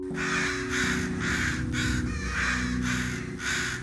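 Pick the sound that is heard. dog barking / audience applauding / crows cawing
crows cawing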